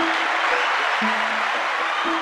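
An audience applauds steadily, a dense wash of clapping filling the whole moment, with faint low sustained tones sounding underneath. No one speaks.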